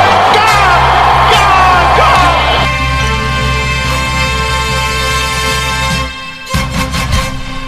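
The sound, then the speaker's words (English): A huge cricket stadium crowd roars and cheers loudly in a sustained, dense wall of yelling and whooping as bowler Siddle takes a hat-trick wicket. The noise cuts off abruptly at the end, followed by a few brief knocks. “Crowd cheers.”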